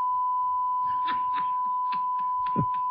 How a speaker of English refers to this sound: That's a long bleep.